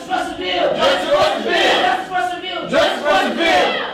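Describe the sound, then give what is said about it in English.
Dozens of protesters inside City Hall shout loud, sustained calls together in rising and falling waves, their voices ringing and echoing off the marble walls. “Cell phone video streamed live to Facebook as their calls echoed against the marble walls.”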